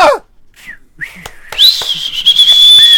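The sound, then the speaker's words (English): Loud human whistling like a cheering crowd: a sharp falling whistle, then a sustained rising whistle held high, with brief shout-like bursts and crowd noise beneath. “And the crowd just erupts in uproarious applause. Yeah. You hear whistles and shouts.”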